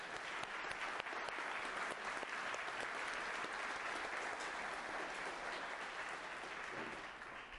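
A crowd applauds steadily to welcome a guest, a dense wash of many hands clapping at an even, sustained loudness that tapers off only slightly at the end, with no voices heard.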